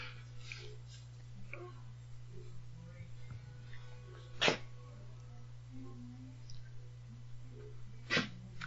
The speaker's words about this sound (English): the dog's got a cough going.